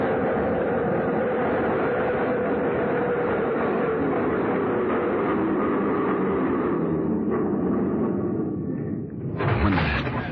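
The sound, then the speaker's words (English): A subway train rumbles loudly along a hot underground platform. Its steady roar slowly winds down as it brakes to a stop, followed by a brief hiss and clatter near the end. “Train stopped, he went in through the center door.”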